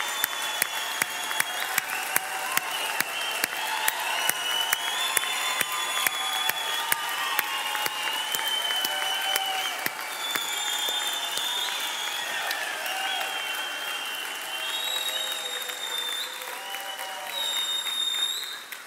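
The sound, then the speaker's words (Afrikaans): A large crowd claps, shouts and whistles together in a loud, sustained roar; dense applause mixes with shrill whistles and cheering voices throughout, staying busy and energetic the whole time. “So as ek hom nou gaan kroon, wil ek vra dat julle begin hande klap, skree, fluit, maak 'n lawaai.”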